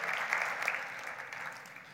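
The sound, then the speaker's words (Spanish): An audience applauds to give thanks to the Lord, a dense wash of many hands clapping that stays fairly even for two seconds, with no voices standing out. “Podemos aplaudir y darle gracias al Señor por lo que Él decidió hacer por amor a nosotros.”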